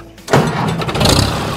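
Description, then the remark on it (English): The engine of an old Massey Harris tractor, a classic tractor in Kansas, cranks and catches after a brief quiet moment, then settles into a loud, steady rumbling run. “As you can see, it starts real good and it just drives like a new one and nothing else to be done with it.”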